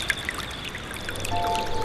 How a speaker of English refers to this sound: Ka paua tāna tokotoko ki te toka. He struck his tokotoko to the rock and water started to trickle down.